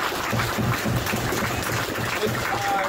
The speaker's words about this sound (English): So thank you guys again. Again, big round of applause for everybody.